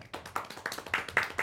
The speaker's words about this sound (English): You're allowed to clap